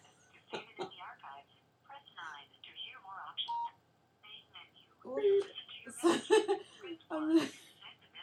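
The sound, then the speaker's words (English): A quick run of short electronic telephone keypad tones as a phone number is dialed, about five beeps in the second half, mixed in with people talking and laughing over them. “And we just gave out somebody's phone number.”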